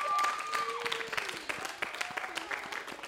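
An audience claps steadily throughout, a dense patter of many hands at moderate volume, with a few whoops and cheering voices rising over the applause.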